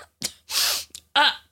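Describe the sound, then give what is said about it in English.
A person mimics sneezing with their voice: a quick sharp intake, a loud hissing burst, then a brief catch and a second, more voiced sneeze sound, with no words spoken. “and then as she's pulling them out, because she's pulling them from above her head, a few fall out and kind of like hit her in the face, and she's like sneezing.”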